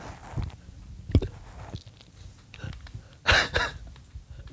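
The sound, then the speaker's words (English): A single loud, sharp sneeze bursts out with a breathy, hissing spray, preceded by a few faint clicks and soft throat sounds, then quiet breathing. “I had a sneeze.”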